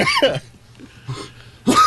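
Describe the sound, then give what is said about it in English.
A person coughs several times in short, harsh bursts, with one cough at the start, a softer one in the middle, and a loud final cough. “Don't cough too hard.”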